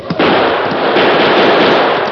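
Gunshots fired at a tunnel ceiling: a sharp report opens, then a loud, dense roar of overlapping blasts and crackle fills the rest of the moment, with no voices.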